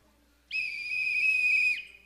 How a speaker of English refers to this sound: But the peace of God should be that rule in our life, that umpire. If anything, it's like a whistle.